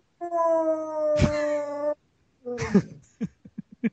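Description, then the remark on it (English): A dog inside a house lets out a long, steady howl, then a shorter second howl trailing into a few quick yips. No one talks over it. “What's it like having a wolf inside of your house?”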